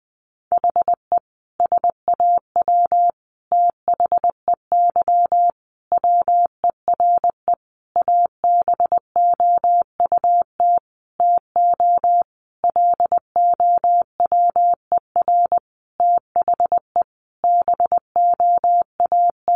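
Morse code sent at about 20 words per minute, spelling out practice sentences built from the top 700 words: a steady, mid-pitched beeping tone keyed into quick dots and longer dashes, with brief gaps between letters and words, and no voices.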